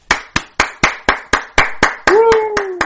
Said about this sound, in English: Now, are we clapping sarcastically or are we clapping because, you know, the guy, fucking 5,000 something games.